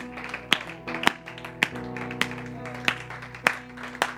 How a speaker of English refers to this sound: Give a clap offering to the Lord if you would.